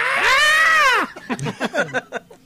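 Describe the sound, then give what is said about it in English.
A parrot gives one loud, drawn-out scream that lasts about a second, with a strained tone that rises and falls. It is followed by a string of short, choppy squawks or babble. “And it just lets out weird screams.”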